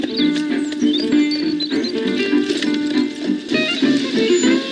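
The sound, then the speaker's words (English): Hooves of a ridden horse clip-clop at a steady walking pace, layered over a busy, continuous background with sustained tonal sounds and no clear speech. “Your boyfriend's a very good rider.”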